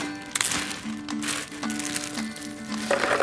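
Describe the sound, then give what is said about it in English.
Four cups of ice cubes tumble and clatter into a blender jar for frozen horchata lattes in a quick series of irregular, crackling bursts, with a soft melodic tone running steadily underneath. “I just throw everything into a blender. I'll start with 4 cups of ice.”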